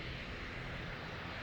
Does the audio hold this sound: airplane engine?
yes